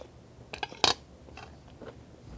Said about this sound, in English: I'm dipping my vegetables in just a mixture of salt and table salt and black pepper, and I'm enjoying it very much. And the vegetables came from Super Maxi, the supermarket. I'm just eating a healthy lunch.